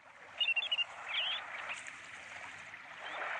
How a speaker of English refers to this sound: Morning Report's bird of the day on Tuesday was the wandering tattler.